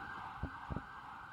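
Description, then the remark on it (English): A police car siren holds a steady, piercing tone throughout as police cars speed towards the Midway, fairly loud and constant, with two brief low thumps partway through. No one speaks. “Cop cars started speeding towards the Midway.”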